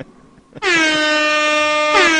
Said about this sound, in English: presents instant rap air horn fun.